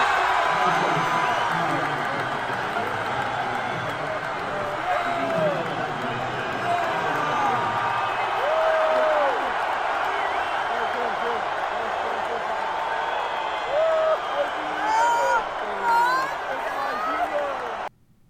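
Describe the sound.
A large rally crowd at the Palmetto Bowl in South Carolina cheers President Trump steadily for about eighteen seconds, a dense roar of overlapping voices with scattered high shouts and whoops rising above it, and clapping mixed into the noise.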